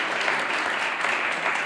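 A crowd applauds steadily as a vote on a dolphin creation in a contest, a dense wash of many hands clapping at an even, sustained loudness throughout, with no break.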